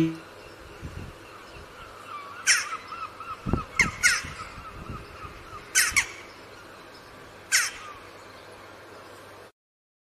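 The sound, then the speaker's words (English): Several sharp, short jackdaw calls ring out at irregular intervals, four or five clear, prominent bursts over soft background chatter and ambient noise. “and now the jackdaws. These are the ones with the gray heads”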